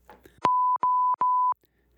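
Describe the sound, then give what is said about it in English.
An alarm clock beeps three times in a steady rhythm, each tone a loud, sustained electronic pitch with short gaps between, clear with no voices. “The beep, beep, beep of the world's most annoying alarm clock.”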